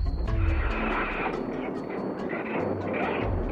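A purported Bigfoot-like creature call recorded in the Florida Keys: a loud, steady, rumbling roar with a deep low drone and hissing noise throughout, swelling slightly at the start and again near the end.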